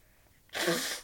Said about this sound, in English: And yes, I'm blowing my nose on air.